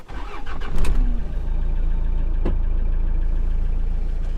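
A car engine cranks and catches with a few clunks, then settles into a steady low rumble that continues evenly to the end, as the car sets off on a Saturday morning in March, driving out of Reykjavík through Hafnarfjörður toward Grindavík, Iceland. No one speaks.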